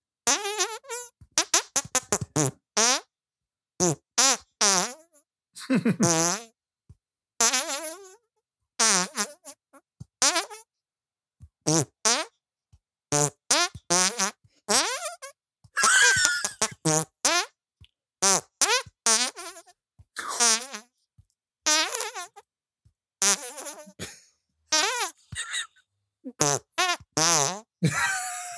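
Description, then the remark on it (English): A rapid, pitched yodeling tune made of hand farts, bursts of squelchy notes rising and falling with wobbly vibrato, loud, with short gaps between phrases. “You got some vibrato on those hand farts.”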